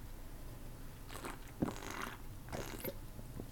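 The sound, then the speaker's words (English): Quiet sipping of water from a can of Liquid Death: a few short slurping and swallowing bursts with faint metallic handling noise, and no talking. “So let me take a sip and let's dive into episode 14”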